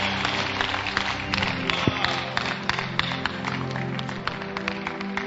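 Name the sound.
audience clapping hands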